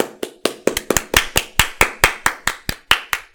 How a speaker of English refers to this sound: You clapped already. You just fucked. For fuck's sake. You just clapped. You just killed us all. You've just killed us.